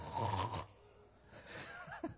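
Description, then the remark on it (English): A voice imitates a dad snoring as the family sleeps: a rough, rasping inhale followed by a second, wavering snort-like snore, with a brief lull between them and no words spoken. “Dad's snoring.”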